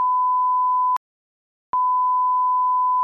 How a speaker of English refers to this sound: Yep, I'm gonna actually like beep that out just so we don't give it away.